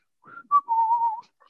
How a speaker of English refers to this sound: And then if they turn around and look at me, I just turn around and whistle. I look at the ceiling and I whistle.